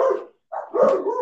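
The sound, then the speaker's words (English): Several dogs bark in loud, overlapping bursts, a short bark, a brief pause, then a longer run of rough barking and yips with no talking. “I have no idea what they're barking at.”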